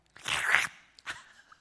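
A crisp crunch of someone biting into a communion cracker, one long crackly bite followed a moment later by a shorter second crunch, with no talking.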